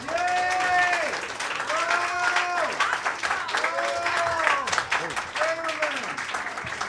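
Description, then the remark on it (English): Steady, dense audience applause at a poetry reading, for the next poet, who just celebrated his retirement, fills the whole clip, with loud voices whooping in rising-and-falling cheers about four times over the clapping. “Our next poet just celebrated his retirement, so give him a special round of applause.”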